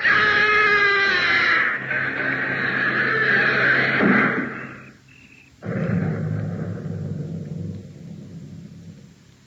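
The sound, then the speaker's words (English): In an audio drama, The House in the Garden, a heavy door grinds shut with a deep, loud rumble and lands with a booming slam, then a low reverberant echo lingers. Faint screams sound near the start. “Inspector, the door is closing.”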